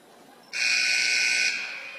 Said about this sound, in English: There's the second buzzer as the Patriots send